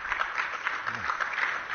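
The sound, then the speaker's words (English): A scattered round of weak, polite golf-style applause, light and thin, a small crowd clapping softly and steadily for a couple of seconds with no voices over it, in response to a statement against fossil fuels. “It's a sort of a weak golf applause there for that definitive statement against fossil fuels where the source of 80% of America's electricity.”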